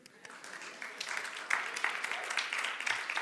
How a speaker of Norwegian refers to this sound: Det noen som har løpt maraton her? Wow! Applaus.